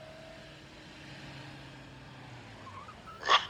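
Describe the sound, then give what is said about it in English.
A car engine rumbles low and steady in a parking garage after dark, shifting in pitch as it moves, then a brief sharp squeal of tires cuts in near the end. “Car. Sorry, ma'am. I'll just get out of your way.”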